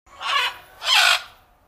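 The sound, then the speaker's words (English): An owl gives two harsh, raspy screeches in quick succession, each lasting under half a second, loud, with a short pause between them and no other sounds. “I loved both your answers, but the correct answer is owls.”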